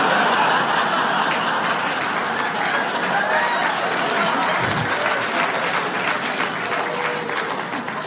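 A crowd applauds steadily and loudly for about eight seconds, with scattered laughter and chuckles mixed into the dense clapping.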